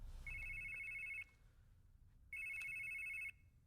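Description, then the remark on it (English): A telephone rings twice for a second incoming call, each shrill electronic trill lasting about a second with a brief pause between, loud over a faint low rumble. “A second phone call from someone who might or might not be Maggie.”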